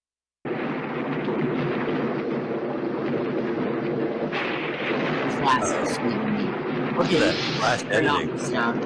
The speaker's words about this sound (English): You're just going to hear a thunderstorm, Mike.